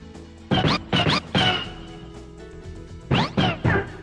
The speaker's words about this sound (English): which of these Yoshi voices do you think is the right one? Should I just play all eight?